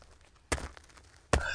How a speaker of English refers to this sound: Clipped, sharp boot falls. Oh. They walk through the scene, never pausing, until it sounds like they're right in front of you.